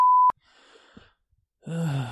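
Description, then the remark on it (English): A loud, steady, high-pitched censorship bleep lasts about a third of a second and cuts off abruptly, followed by a soft breathy exhale and then a voiced groan-like sound. “just beep out what you can't say.”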